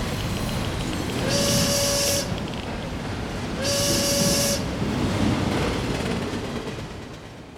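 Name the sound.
train rolling on rails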